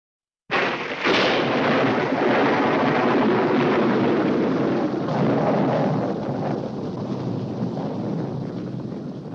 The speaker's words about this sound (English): I think we've been struck by lightning.